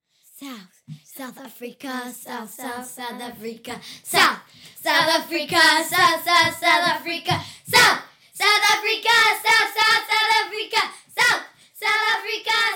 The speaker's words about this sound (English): One more cheer they want to highlight from their camp experience. So I'm going to give them a brief second to prepare, and we'll be right back with our exit cheer.